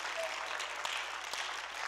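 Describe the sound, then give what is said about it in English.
A crowd claps their hands unto the Lord, steadily, many overlapping hand claps blending into a dense, continuous patter of applause at a moderate level, with no voices standing out. “Oh, somebody clap your hands unto the Lord, folks.”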